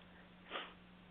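One short, breathy sniff rises out of a quiet background with a faint steady hum, moderately soft, with no talking around it.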